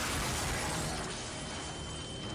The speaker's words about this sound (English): The chase ended at rock bottom for Dre when he screeched into a Hollywood Hills driveway and crashed into the garage of a mansion.